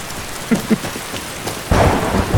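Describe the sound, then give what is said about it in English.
Steady rain hisses on a mountain throughout, with a couple of soft thuds early on, then a deep rumble of thunder rolls in loud for the last stretch, swelling over the downpour. “Ooh, do you think there's a danger of getting hit by lightning up on this mountain?”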